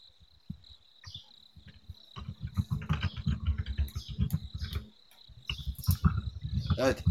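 typing on a keyboard

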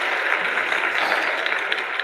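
applause

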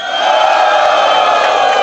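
audience cheering and whooping

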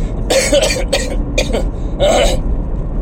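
coughing and throat clearing

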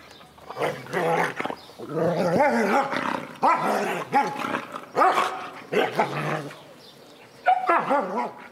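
dog vocalizing

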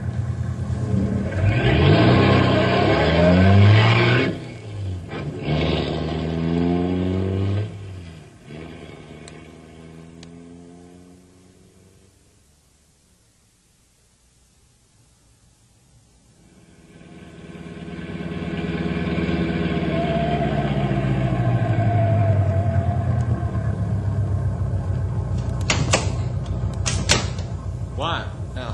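car engine roaring

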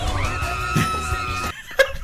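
person screaming

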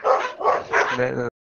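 dogs barking

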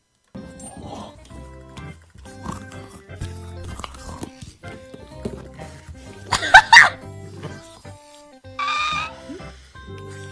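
small dog barking

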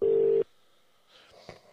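outgoing phone call ringing

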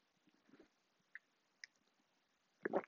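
sipping coffee

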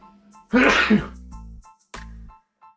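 sneeze

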